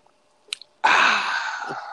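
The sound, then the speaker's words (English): A couple of faint clicks, then a loud, continuous slurping hiss as someone sips a fizzy Canada Dry ginger ale, lasting to the end with no talking. “You're sipping, huh? Good old Canada Dry, bud.”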